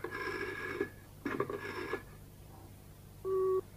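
Two buzzing telephone bursts give way, after a short pause, to a single steady electronic tone, a telephone's engaged busy tone, clear, with no voices, from the radio play Ring for Death of 31 October 1973, found on one of Bob Monkhouse's cassette tapes.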